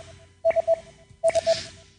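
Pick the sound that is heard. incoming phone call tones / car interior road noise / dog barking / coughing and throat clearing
incoming phone call tones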